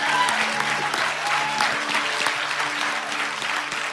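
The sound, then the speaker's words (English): An audience at a church service claps for the Lord for those who gave their lives to the Lord: a steady, dense, sustained wash of many hands with no pauses, with faint murmuring voices underneath. “I do want to say for those who gave your life to the Lord, yes, give a big Lord a clap, that's fine.”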